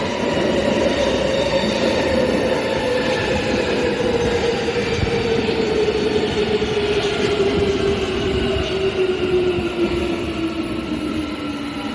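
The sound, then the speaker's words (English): A metro train carrying commuters at dawn runs steadily on its rails, a loud, continuous rumble with a slowly falling hum and faint metallic squeal, unbroken throughout, with no voices. “Descending into the metro abyss at dawn, I am part of the dark-coated machinery of mainly male commuters for which the train wheels turn.”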